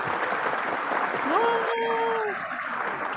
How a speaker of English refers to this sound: We're going to give you some applause here. Hopefully you can hear the applause.